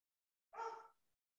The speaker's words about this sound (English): That dog's crazy. I'm sure you heard that.